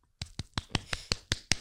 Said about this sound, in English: Well, you don't like the way my kneecap sounds.